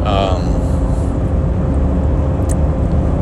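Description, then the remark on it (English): A truck rumbles close behind a moving car, its deep engine and road noise loud and steady throughout, with a brief tonal whine at the very start. “And I got this truck right on my ass.”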